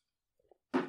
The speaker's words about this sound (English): Would have been a good moment for me to vamp there while you took a sip of your water